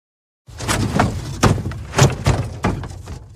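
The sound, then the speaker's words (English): Rocks strike a house in an irregular volley of about six dull, heavy thuds, each a short bang with a low rumbling body, spaced unevenly over a few seconds with no voices. “They're hitting the house with rocks, Adari said,”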